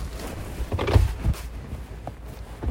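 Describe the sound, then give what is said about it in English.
A car door handle clicks and the door opens with a couple of quick mechanical clunks, followed by quieter rustling and faint handling noise. “There's the door handle.”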